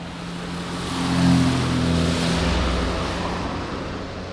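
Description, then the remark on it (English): Steady roar of busy street traffic in Moscow with low engine hum, swelling briefly as a vehicle passes, then settling back into a constant wash of road noise. No voices. “Not long ago, on a trip to Moscow, where the traffic strikes a noisy contrast to the quiet campus of the Hackley School”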